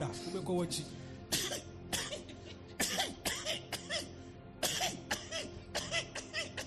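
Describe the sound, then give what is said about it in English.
A goat coughs over and over in a series of harsh, raspy bursts, some in quick pairs, fairly loud, sounding almost like a person hacking. “And so what some of them used to do, that among their flock, if they find one of them that has tuberculosis and is coughing, have you heard a goat coughing before?”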